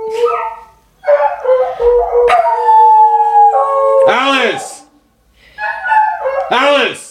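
Dogs howl together in long, wavering, rising-and-falling cries as a campground phone rings with steady electronic tones. The dog Alice sings along with it and the other dogs join in. The howls are loud, with a short pause before a final chorus.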